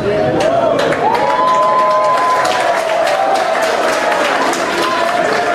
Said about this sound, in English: Are they applauding at him walking away? Please walk away.